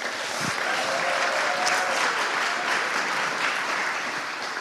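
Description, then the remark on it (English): Steady, dense applause from a sizable audience, a continuous wash of many hands clapping at once, sustained at an even level for several seconds with no voices standing out. “Round of applause”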